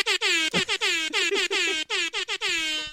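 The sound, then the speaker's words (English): A loud air horn blares in a rapid, stuttering string of short blasts packed back to back for about three seconds, unaccompanied, with no talking. “Even though we've never used an air horn on the show.”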